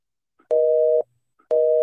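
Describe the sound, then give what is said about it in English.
A telephone busy signal: steady two-tone beeps, each about half a second long, separated by equal silences, clear and loud with no talking. “Busy signal.”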